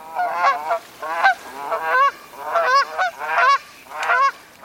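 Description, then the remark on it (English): A flock of geese honks repeatedly in quick, overlapping calls, loud, with short gaps between bursts and no voices. “More recently, we've developed artificial substitutes, but geese and other birds continue to get along just fine with the original material.”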